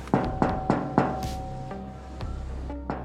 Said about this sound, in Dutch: Onder de brandnetels, op de grond. Een speciale manier van kloppen om te controleren of het veilig is. Een ijzeren vlak. Een soort luik.